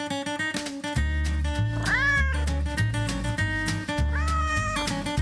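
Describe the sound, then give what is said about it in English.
Two drawn-out cat meows, about two seconds apart, ring out loudly over a steady, bass-heavy musical backing in a sponsor break for soy candles, with no talking. “Meow, meow.”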